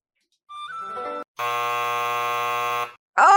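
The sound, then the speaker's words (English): A loud, steady quiz buzzer blares for about a second and a half as a player buzzes in first during an anime opening quiz, with a rich, harsh low tone. A shorter, wavering electronic sound comes before it, and another loud burst begins at the end. “looks like you were on Buzzed In first.”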